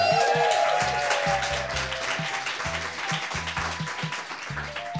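Steady audience applause fills the whole stretch, a dense crackle of many hands clapping at once, with a low, pulsing rhythmic tone running beneath it.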